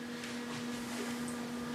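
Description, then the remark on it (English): A printer printing packing slips and shipping labels gives a steady low mechanical hum with soft, brief bursts of rustling motor noise over its constant drone; no one speaks. “And literally leave it to when we're filming for the printer to be out of paper.”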